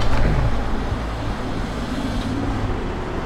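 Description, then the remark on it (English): A steady rumble of road traffic on Westbourne Grove with engines droning, a vehicle passing early on before the wash of traffic settles into a continuous low hum. “We've just moved out onto the street on Westbourne Grove because they have great windows, and the work will also be visible to drive-by traffic, which is so uplifting for people commuting and on their way to work.”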